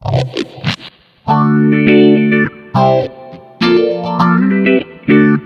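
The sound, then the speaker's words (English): An electric guitar plays sustained, swirling chords through a 90s Small Stone version 4 phaser pedal with a touch of reverb, in several loud strummed bursts after a brief picked intro, with no talking. “Remember the 90s small stone version 4. That's the one you want. Add a little bit of reverb.”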